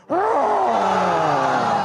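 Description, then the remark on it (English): A church audience roars together in imitation of a lion on the count of three, one loud, sustained growling cry that bursts in abruptly and holds steady for nearly two seconds. “So on the count of three, we're going to roar in this church.”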